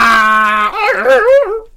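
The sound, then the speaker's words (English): A dog whimpers and yips: a sustained high whine that breaks into wavering, warbling cries before trailing off, loud and alone for about two seconds. “Somebody kill the dog. I don't like this thing.”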